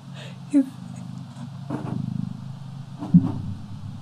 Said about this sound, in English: Is that? It's him purring. Oh. Welcome to the party.